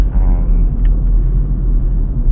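Steady low road rumble fills the cabin of a car driving in traffic, a continuous muffled drone with no voices, the engine and tire noise holding fairly loud throughout.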